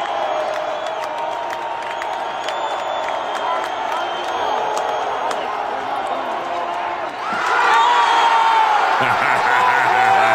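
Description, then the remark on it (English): A big stadium crowd at SoFi Stadium, recorded from the end zone, roars steadily, then erupts into louder cheering and applause about two-thirds through as Derek Carr throws a touchdown to Devontae Adams at a home game, with whoops and a voice buried in the dense, sustained wall of noise. “And listen to the listen to the applause and the crowd explosion when this happens.”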